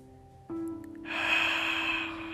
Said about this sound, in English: We're going to start by simply letting the body breathe. You're going to start by breathing in through the nose, hold it, and then breathing out through the mouth.